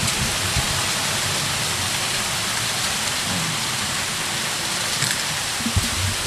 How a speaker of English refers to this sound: You know, and I feel like I want to interview the storm right now. That's what I'm going to do. I'm going to interview the storm.